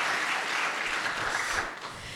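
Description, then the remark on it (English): A live audience breaks into loud, sustained applause with scattered cheers for Matt Berry, a dense wash of clapping that stays steady for a couple of seconds before easing slightly at the end. “Should we give another cheer for Matt Berry, please?”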